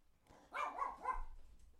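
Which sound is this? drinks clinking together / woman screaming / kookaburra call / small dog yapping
small dog yapping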